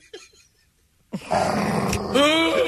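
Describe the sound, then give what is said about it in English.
A voice imitates a dog's growl: a brief faint murmur, a pause, then a loud, rough, sustained snarl that rises in pitch near the end. “Scary doggy.”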